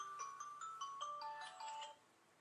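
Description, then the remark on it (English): An alarm clock rings at 6 o'clock in the morning with a bright electronic melody, a quick run of clear tones that plays for about two seconds and then cuts off, fairly loud. “hearing the alarm go off in the morning”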